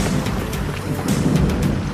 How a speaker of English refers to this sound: Well, don't stand there in the rain.